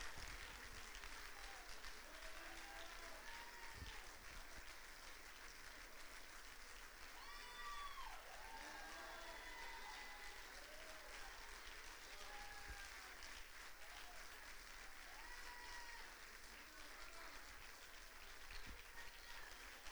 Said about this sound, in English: Come on, if you're seeing amazing things. Even if you don't know, you just clap. Even if you don't know.